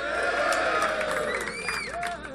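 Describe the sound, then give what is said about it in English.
A crowd cheers and shouts continuously, a dense wash of many voices with high whoops and rising yells rising above the steady roar. “Oh, the late shout, always good.”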